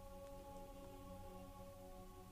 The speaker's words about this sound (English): you notice the rain has slowed down to a sprinkle, and the sun is starting to break through the clouds once again.